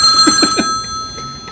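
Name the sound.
telephone bell ringing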